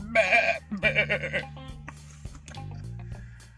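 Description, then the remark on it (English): A goat bleats twice in quick succession, loud, each call wavering and nasal, followed by a low steady hum and faint background noise. “They're very beautiful goats, too.”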